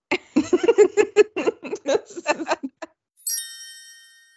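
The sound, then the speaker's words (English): A burst of laughter gives way to a single bright chime that rings out clearly and sustains with a shimmering, slowly fading tone. “Chime.”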